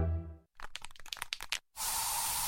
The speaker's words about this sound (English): So you just used bug spray in your home. Now what?